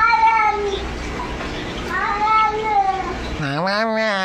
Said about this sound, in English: I mean, that does sound like a cat's voice, does it not? Yeah, that no, does. No, it doesn't. Oh, I come on. Does. It does sound a little bit maybe like a baby, too, you know, but it's a cat. You can just hear it in the vocal cords.